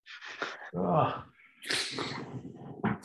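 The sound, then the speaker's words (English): A loud sneeze: a sharp breathy intake, a voiced burst, then another forceful hissing blast and a short final snort, all in quick succession with no talking. “This is not the end of that sneeze, is what I'm saying.”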